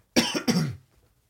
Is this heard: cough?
yes